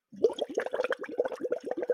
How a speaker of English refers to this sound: I'm just blowing bubbles.